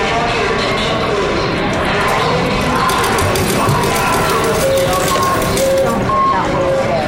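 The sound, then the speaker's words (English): A dense, steady wash of crowd chatter fills the Reno, Nevada airport, with bright electronic tones and chimes from slot machines and canned music ringing out over the constant background din of the crowds. “Just getting to this workshop required I run the auditory gauntlet of the Reno, Nevada airport with its slot machines, canned music, and crowds.”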